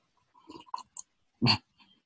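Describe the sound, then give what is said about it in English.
Sipping a drink: a few soft, quick slurping sounds, then a brief louder gulp or breathy swallow after a short pause. No one speaks. “In fact, let's have another sip of that.”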